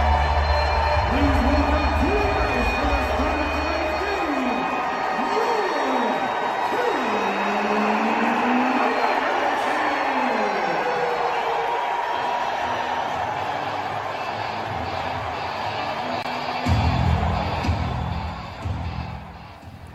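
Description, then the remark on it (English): A loud, steady roar from a hockey arena crowd in Raleigh, North Carolina, at game one between the Preds and Hurricanes, fills the whole stretch, with a song playing through the din and a public address announcer's voice booming over the noise at times. “And you could just keep the crowd and that song going in the background forever.”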